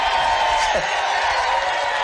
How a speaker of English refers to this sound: No, they're screaming.